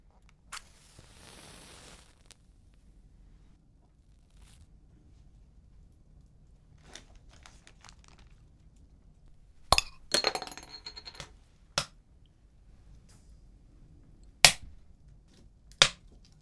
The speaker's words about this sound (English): In a minute, I am going to create some beautiful French sounds. I'm going to record the sound of the fire popping and crackling and the sound of a baguette breaking and some bread, some brie being spread on the bread.